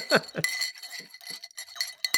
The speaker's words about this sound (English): did I hear some rocks rattling around in a glass earlier?